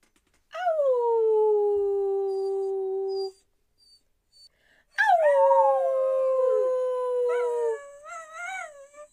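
animal, dog howling

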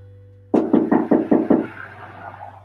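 impact, knocking on a door

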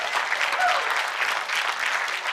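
crowd, audience cheering and applauding

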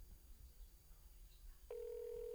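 signal or alarm, phone call ringing out

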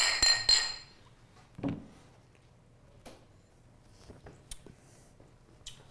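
household object, beer glasses clinking

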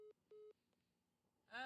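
fault, phone call cutting out

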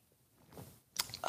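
food or drink, sipping a drink

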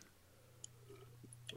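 food or drink, sipping a drink

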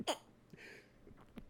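human body sound, sneeze

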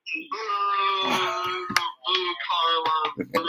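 crowd, booing

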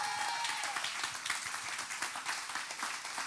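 crowd, audience applause

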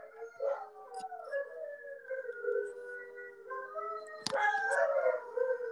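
animal, dogs howling

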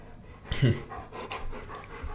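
animal, dog panting

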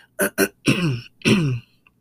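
human body sound, throat clearing

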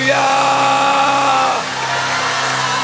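crowd, audience shouting and cheering

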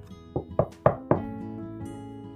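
household object, knocking on a door

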